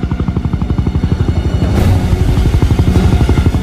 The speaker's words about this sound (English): She clings onto Neo, the pair suspended in limbo, then looks up to see a helicopter approaching.